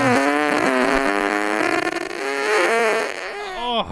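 A squeaky fart sound, played in the Guess Who's Gas game on The Woody Show, holds a steady buzzing tone for about four seconds, wavering in pitch with a few quick dips before a sharp upward squeal at the end.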